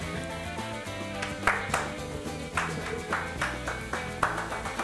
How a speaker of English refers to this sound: We don't need the claps. You always need the claps. You're clapping through my... No, we don't. No, we don't. No, you're clapping through my rhythm off.